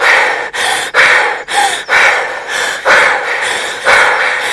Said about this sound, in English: The women drove into the marsh of the forest and got out of the bus, not sure if they were being followed. Out of breath, they looked at each other.